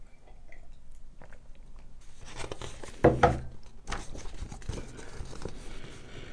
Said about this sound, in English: Sip a tea. Back away from the mic.